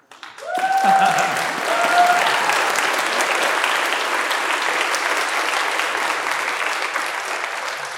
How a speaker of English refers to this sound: and then we can give them a round of applause, our newlyweds.